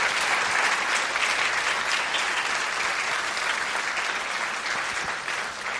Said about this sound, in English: I don't know about you, but I think the Lord needs a round of applause this morning for what he's done in these guys' life.